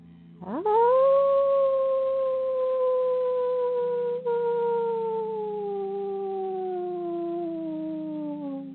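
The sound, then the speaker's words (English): A human voice imitates a wolf howl, done together as a group after a gentle inhale: one long, loud call that swoops up quickly, then glides slowly downward for several seconds over a low, steady hum, with a brief break midway. “So gentle inhale, and we'll do a wolf howl together, following the wolf in the middle.”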